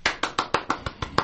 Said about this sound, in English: That's for you. That's applause for you for just a brilliant, brilliant book.